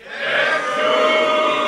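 A live crowd in Cork City shouts a name together in unison on the count of three, one loud, sustained, drawn-out cry that holds steady for under two seconds.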